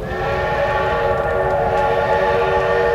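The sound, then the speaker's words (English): A train whistle blows in a long, steady chord over the low, continuous rumble of a rolling train, loud for the whole stretch with no one speaking, in a promo for the NBC series Super Train. “All aboard!”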